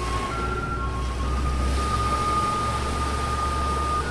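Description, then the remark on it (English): A street-cleaning truck drives around the Eiffel Tower spraying water on the road and playing a song: a steady low engine rumble and constant hiss of spraying water, while a thin, high electronic tone holds over it like a piped tune. “There's even a truck that drives around the Eiffel Tower spraying water on the road and playing this.”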